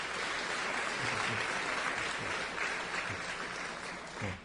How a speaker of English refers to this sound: All right. So I guess we can applaud them as they walk up.